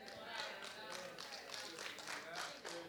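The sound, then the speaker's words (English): A light, polite smattering of applause: a few people clapping softly in an uneven patter of quick, crisp claps for about three seconds, with faint murmuring underneath. “Thank you for the little golf clap right there.”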